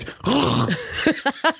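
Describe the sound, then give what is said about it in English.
Someone loudly clears their throat with a long, raspy, groaning rumble, followed by three short, sharp grunting coughs in quick succession. “I can't tell if you're clearing your throat or you're dying.”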